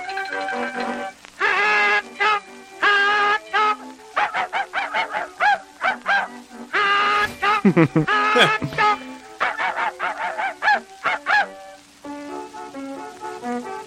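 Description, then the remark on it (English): Cartoon hot dogs in the Mickey Mouse cartoon The Carnival Kid bark as Mickey stabs them, a rapid chorus of high, nasal, honk-like yaps, dozens of short calls tumbling over each other in bursts, loud and with no talking. “those dogs are barking.”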